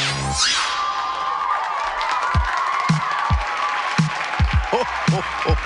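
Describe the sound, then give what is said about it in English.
A crowd at a Christmas show at the Burning Spear cheers and whoops loudly, with scattered clapping, steady shouting and a few rising yells cutting through the roar of voices. “All right, you people get ready to cheer for the Christmas show at the Burning Spear.”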